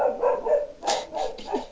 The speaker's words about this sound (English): Who's that? Got a dog in your house? Hey, Muffin, how you doing? So I'm at my mum's. That's cool. What's your mum doing to Muffin? I think he's seen someone outside.